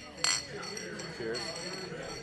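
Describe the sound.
Beer glasses, including a shaker pint glass, clink together in a toast with the person next to the speaker: one bright knock followed by a couple of softer taps, with a low murmur of voices in the background.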